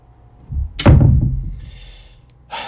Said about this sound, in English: Get out. Close the damn door.